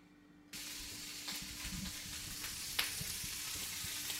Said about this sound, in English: That's my bacon frying.